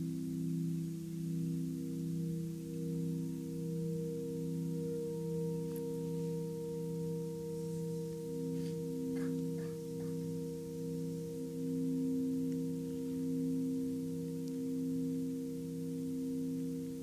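A Tibetan singing bowl rings steadily during a mindfulness meditation, with several low, overlapping tones that waver and pulse gently, holding a continuous hum throughout with no speech.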